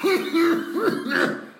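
Harsh, throaty coughing repeats in quick succession, three or four rough, voiced hacks close to the mic, loud and strained with brief gasps between them.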